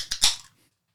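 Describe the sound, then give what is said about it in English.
Two sharp, crackling pops in quick succession from small indoor fireworks, the second louder than the first, then quickly fading into silence. “Pop. What is that? You'll see. Okay. It's fireworks.”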